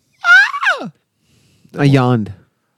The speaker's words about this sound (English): I yawned.